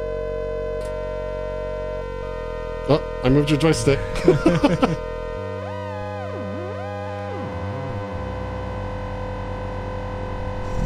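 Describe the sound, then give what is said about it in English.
A steady electronic synthesizer drone holds throughout, then a pure sine-wave tone with phasing swoops and wobbles up and down in pitch before settling into a buzzy, shimmering layer. A voice briefly speaks over it early on. “Some kind of nice phasing going on there.”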